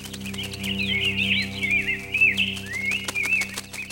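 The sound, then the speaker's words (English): A flock of birds chirps and twitters continuously, their overlapping high calls forming a busy chorus over a steady low hum, with no voices present. “But then, the birds came back.”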